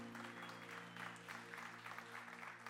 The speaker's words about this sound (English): Can you guys give Lulu a huge round of applause for leading us in worship this morning?